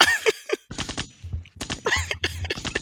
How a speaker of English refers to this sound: Look, get some gunshots on that.